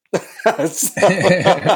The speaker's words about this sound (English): I just loved his timing on that cough.